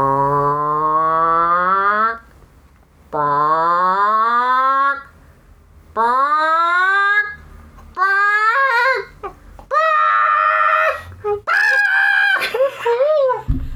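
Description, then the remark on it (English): A human voice imitates a hen laying an egg: a series of loud, drawn-out squawking cries with swooping pitch, building into quicker, choppier clucks toward the end, with short pauses between bursts. “So, have you ever heard a chicken lay an egg? Do you want me to do an impression?”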